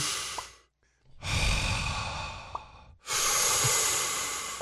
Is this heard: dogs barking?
no